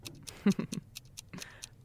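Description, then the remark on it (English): A timer clock ticks steadily, with sharp, evenly spaced clicks about four per second, moderately loud, alongside a few brief low thumps near the start. “start the clock.”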